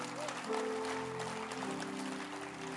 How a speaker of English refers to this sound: Someone like Bishop Dag, who has affected our lives for eternity, is a good father. I want to clap for Bishop Dag.